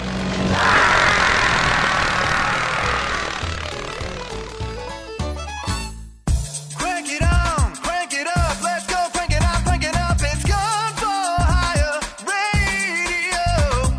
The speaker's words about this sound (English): You hear a buzzing sound, I'm lowering my desk. I know, you've got that standing desk now.